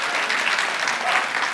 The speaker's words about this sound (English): Would you give our worship team another round of applause?